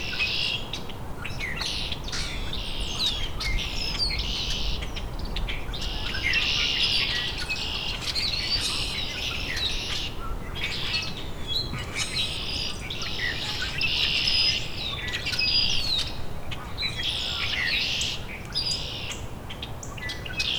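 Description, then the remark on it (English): A rusty blackbird sings from a dogwood amid a steady chorus of chirping birds and buzzing insects, its squeaky, creaking notes repeating every few seconds, with no one talking. “Rusty blackbird singing from exactly where he landed before, just in some dogwood.”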